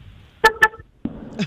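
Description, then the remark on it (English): Two quick, bright car horn beeps in a row, fairly loud, followed by a thud and a brief rustle. No one speaks. “Who just blew their horn?”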